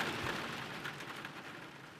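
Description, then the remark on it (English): Steady rain falling in a continuous, even hiss, moderately loud, with a soft low thump near the start and no voices. “Finally, the rain stops, and we make our way to the creek.”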